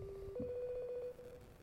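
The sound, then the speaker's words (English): An Instagram call ringing tone plays, a steady electronic tone with a faint pulsing warble that holds for over a second, heard clearly with no one talking over it. “Why is it a ring like that? That's it's Instagram.”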